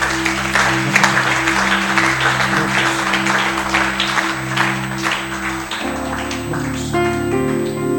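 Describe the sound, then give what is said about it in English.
An audience claps steadily for about six seconds, a dense patter of many hands over a low droning hum. The clapping then thins as sustained electronic tones take over. “Clap for me.”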